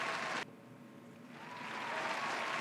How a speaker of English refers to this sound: Hold up. Let me get my round of applause for Jordan Mailata.